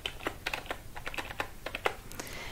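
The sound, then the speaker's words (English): Rapid, uneven clicking of keys on a computer keyboard as someone types up notes, clear, with quick bursts of taps and brief pauses between them, and no voices. “And just start typing up my observations that I see about you.”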